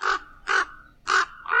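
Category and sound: bird, raven cawing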